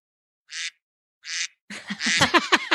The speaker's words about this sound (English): What does the duck mean? What's the duck mean? Wrong answer